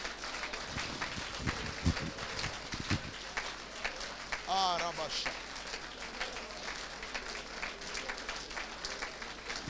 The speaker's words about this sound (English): Just lift your voice. The next 1 minute, clap your hands and begin to declare to God.